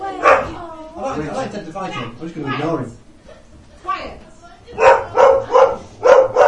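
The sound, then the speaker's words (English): A dog barks: a single bark at the start, then a quick run of four or five loud, sharp barks near the end, with a person's voice in between. “He's not there, he doesn't know what to do, so he's barking.”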